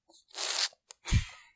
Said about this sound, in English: Hold on. I'm gonna sneeze.